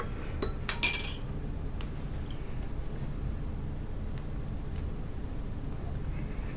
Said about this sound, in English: Let me rinse my glass.